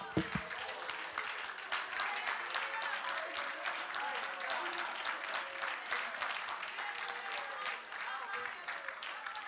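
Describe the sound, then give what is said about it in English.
An audience claps their hands in a loud, sustained burst of dense applause that keeps going for several seconds, with indistinct voices calling out underneath. “Come on, clap your hands.”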